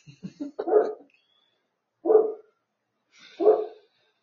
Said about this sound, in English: Dog says hi, everybody.